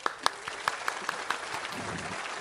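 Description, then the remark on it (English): A small group claps for a couple of seconds, sharp individual claps standing out near the start before blending into a softer, steady patter of applause. “A round of applause”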